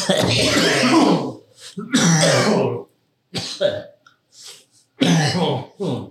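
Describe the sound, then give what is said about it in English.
A harsh coughing fit: several broad, raspy bursts in quick succession with short gasps and throat-clearing in between, loud with no talking. “Welcome to our cough cast.”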